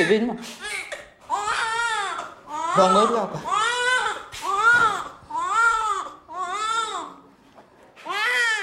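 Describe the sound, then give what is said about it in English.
A newborn baby boy, just born and healthy, cries in a series of loud, wavering wails, each rising and falling in pitch, repeated about seven times with short gasping pauses between them. “This little boy here has just been born, and as you can hear, he's healthy and he's being taken care of.”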